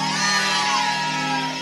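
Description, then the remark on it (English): A church audience shouts a believing "amen" together in one loud, sustained burst of many voices, lasting under two seconds. “Then would you please shout me a believing amen?”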